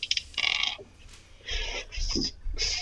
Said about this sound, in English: Damn, has a dog. Yeah, that's Cooper.